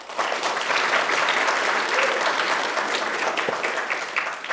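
Sustained audience applause from a large crowd, steady and loud for several seconds, a dense wash of clapping with no pauses and no voices standing out, given in answer to a question about whether what the Bible teaches is true.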